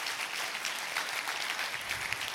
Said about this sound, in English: Do you believe it? Clap your hands if you believe that.